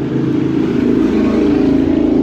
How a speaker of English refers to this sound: Sorry, the traffic is super loud.